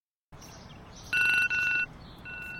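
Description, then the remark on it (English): A phone alarm ringtone plays electronic tones in two quick repeated bursts, bright and fairly loud, then a softer steady tone, over a low background hiss with no talking. “Sorry, everyone who uses that as their alarm sound.”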